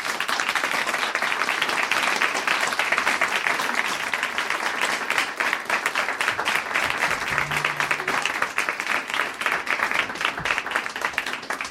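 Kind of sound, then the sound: crowd, audience round of applause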